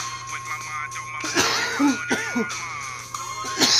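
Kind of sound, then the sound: human body sound, coughing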